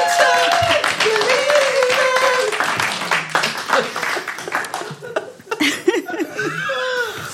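An audience breaks into sustained applause, a dense crackle of many hands clapping mixed with laughter, whoops and cheers, staying loud for several seconds before thinning slightly toward the end.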